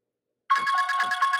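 A phone alarm tone starts abruptly after a moment of silence and rings steadily, a bright repeating electronic melody pulsing in quick, even beats with no voices over it.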